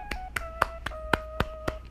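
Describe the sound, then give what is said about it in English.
Seven sharp hand claps in tribute to a rapper, in a steady, even rhythm, about four per second, with a faint steady tone humming underneath and no talking. “I gotta clap it up.”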